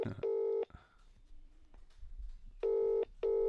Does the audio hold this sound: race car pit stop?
no